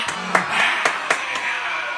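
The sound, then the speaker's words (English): A sold-out crowd at the Palladium in New York City applauds steadily, a dense wash of clapping with a few sharper, louder claps standing out, sounding full throughout. “Let's make some noise.”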